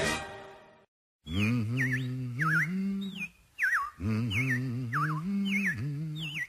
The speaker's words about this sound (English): Well, the robins are back. That's a sure sign of spring.